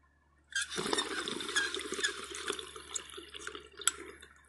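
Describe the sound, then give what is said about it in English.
Water in a dab rig bubbles steadily during a hit, starting abruptly and continuing as a dense, gurgling rush for several seconds, with no voices over it. “Some butter cookies, about to dab it up.”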